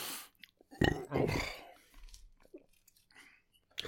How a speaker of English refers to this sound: I'm not. It's just making me burp.